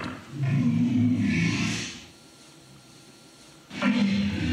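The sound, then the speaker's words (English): A deep, rumbling walrus bellow with a gravelly, throaty roar lasts about two seconds, fades into a quiet pause, then a second loud bellow starts near the end. “How, this is a walrus.”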